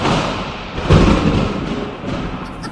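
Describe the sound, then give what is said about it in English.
A deep, rumbling thunder effect introducing the show's Thunder Round segment rolls in with a heavy boom near the start of the second, then sustains as a dense, low roar for a few seconds without any voices. “Much like the power Thor invoked when he wielded his hammer Mjutner, we now invoke that same power with the Thunder Round.”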